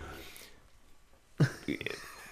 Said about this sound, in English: your dog is belching or something. I don't know what that was.